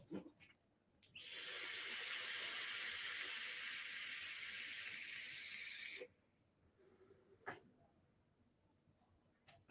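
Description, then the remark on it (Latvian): A steady, airy hiss of a vape being drawn through an RDA with two coils at 60 watts, airflow fully open, lasting about five seconds, followed by quiet background noise and a couple of faint clicks. “Jā, esam atgriezis gaisa padēlu pilnīgi vaļā.”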